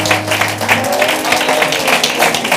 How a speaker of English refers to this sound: And would you just give the Lord another hand clap of praise? Hallelujah.